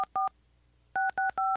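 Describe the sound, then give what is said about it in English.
Phone keypad tones beep out an attempt at Mary Had a Little Lamb: a quick pair of dual-pitch beeps, a pause, then three steady beeps in a row, each note a slightly different pitch, loud and clear with no talking. “I can't do Mary Had a Little Lamb to save my ass.”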